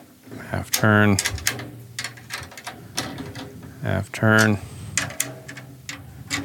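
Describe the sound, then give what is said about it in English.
Two rounds of mechanical turning as two drum keys turn snare drum tension rods on opposite sides a half turn each, with a squeaky, creaking whine over scattered metallic clicks and ticks, fairly loud, separated by a short pause. “So now we go back to two drum keys. Opposite sides, half turn, go to the next one.”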